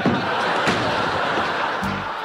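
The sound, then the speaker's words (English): In a physical comedy bit, Carla answers the door and slams it shut in Diane's face with a sharp, loud bang over a dense wash of crowd noise, followed shortly by a brief voice near the end. “Carla answers it, and she immediately slams the door in Diane's yeah, face.”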